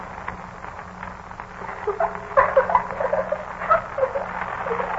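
At night, a few soft, hesitant footsteps mix with light, irregular rustling and small scratchy ticks at a dresser across the room, growing a little busier midway before settling back. The sounds stay fairly quiet, and no one speaks.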